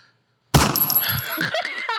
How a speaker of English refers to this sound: Hey, you gonna stop with these goddamn gunshots towards me, okay? He played one earlier. Okay. He scared the shit out of me. I ain't even gonna front. He was just practicing the buttons, and it scared the fuck out of me.